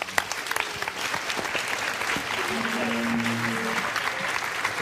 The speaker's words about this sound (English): So thank you very much. I'm going to clap again.